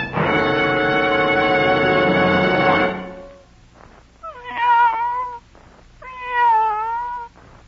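A cat lets out a long, loud, drawn-out yowl, then two shorter wavering meows after brief pauses, with no talking.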